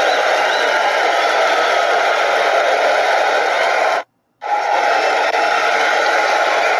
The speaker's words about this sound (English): All right, let's get it started. Y'all ready for the podcast? Let me hear a round of applause.